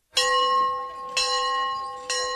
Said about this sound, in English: The bell summoned them from the playing fields to the study hall. Their lives were regulated by that bell, a bell that had a history of its own.